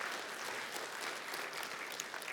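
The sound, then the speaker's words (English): A steady burst of crowd applause at Unionville Alliance Church, many hands clapping at once for a church volunteer in a dense, even wash of sound that holds at a constant level for a couple of seconds with no voices. “And a lot of things that that's worth a clap.”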